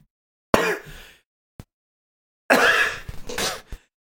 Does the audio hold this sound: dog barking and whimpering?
no